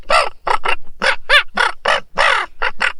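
Loud, harsh raven croaks come in a rapid, uneven series of about nine calls, overlapping from more than one bird as one raven chases another raven out of its backyard, with no talking.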